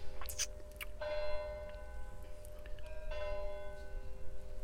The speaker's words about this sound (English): Yeah, I'm noticing it. Slight distraction that I'm feeling from the bells, but that's fine.